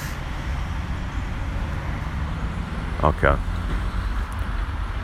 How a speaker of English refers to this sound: I'm just gonna go across the road. There's a lot of cars, so I'm gonna have to pause it so I can pay attention.